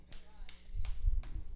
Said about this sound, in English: Not a lot of claps on that one. Because people are like, oh, man. Yeah, it just got real.